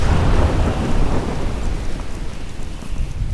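A heavy thunderstorm with a deep, sustained rumble of thunder over steady, dense rainfall, loud and continuous throughout with no voices.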